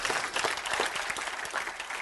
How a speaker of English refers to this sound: Somebody clap your hands and say amen or do something.